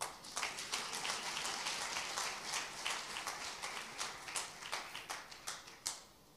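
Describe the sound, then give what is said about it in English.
A crowd claps for about six seconds in a dense patter of hand claps that thins out toward the end into a few separate, sharper claps before stopping. “Okay, clap then.”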